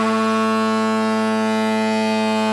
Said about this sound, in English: I don't like to, intrude on the edit of this, but if you could just play the foghorn just now.